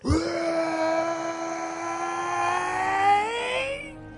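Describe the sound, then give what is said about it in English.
A person voices the angry roar of Draco Dragon: one long, loud, strained cry held at a steady pitch for about four seconds, swelling slightly before cutting off abruptly. “As soon as they got there, Draco Dragon, angry as she was, let out a big roar.”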